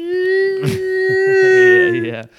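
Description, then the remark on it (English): A voice imitates a whale mating call, holding one long, steady moaning tone for over two seconds that rises slightly before trailing off, with another voice murmuring underneath. “You don't do that with whales. That'd be awesome. We should. Yeah, I don't know. You know, just play, like, a mating...”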